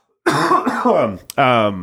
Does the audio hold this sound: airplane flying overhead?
no